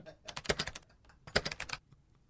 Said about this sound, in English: What are you typing? I accidentally did a capital H.